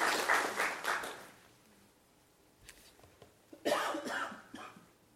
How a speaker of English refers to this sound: Why don't you just give each other a round of applause for appreciation to each other for the work.